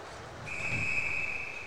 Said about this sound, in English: And that's going to go for an icing, and we'll have our first whistle early in the second.